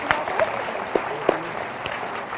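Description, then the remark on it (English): An audience at Redemption Church Flagstaff gives a round of applause for newly commissioned elders, a dense wash of many hands clapping steadily with a few sharper claps standing out, moderately loud and with no talking over it. “Would you guys round of applause for these gentlemen?”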